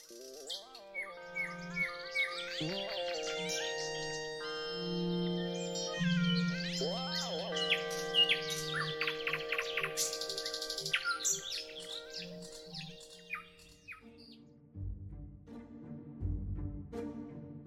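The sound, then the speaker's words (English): A busy chorus of birdsong, with many overlapping chirps, trills and whistled notes, layered over steady low tones before the calls thin out toward the end. “Perhaps it's harder for us to understand the language of a species so far from us, evolutionarily speaking, like birds or cats.”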